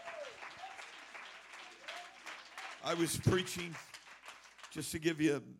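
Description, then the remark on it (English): An audience claps their hands in a dense, steady wash of applause that builds in intensity, with voices shouting and cheering loudly over it in bursts. “Let's clap our hands all over this place.”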